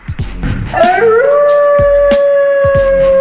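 A single long wolf howl swoops upward and then holds a steady, ringing note for several seconds, loud, with a few dull thumps beating underneath.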